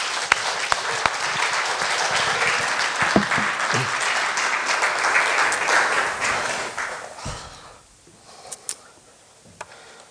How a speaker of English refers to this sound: Would you guys give him a round of applause for helping us out here?